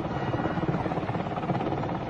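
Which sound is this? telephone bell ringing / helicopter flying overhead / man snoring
helicopter flying overhead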